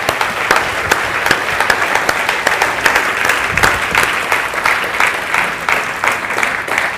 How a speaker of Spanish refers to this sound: ¿Qué le parece a usted eso? ¿Verdad que sí merecen un aplauso?